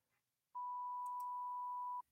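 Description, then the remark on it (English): A single loud, steady electronic beep at one pure pitch, sustained for about a second and a half, then cutting off abruptly. No one speaks. “Did you hear that beep?”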